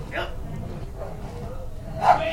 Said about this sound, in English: Those are your dogs